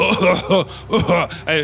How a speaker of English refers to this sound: it sounds like a forced cough almost.